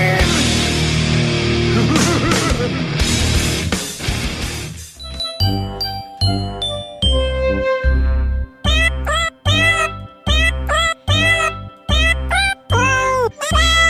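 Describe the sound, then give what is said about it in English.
After a few seconds of dense music, a bouncy tune is played with pitched cat meows: short, evenly spaced mews that step through a cheerful holiday melody, loud. “That's some ….”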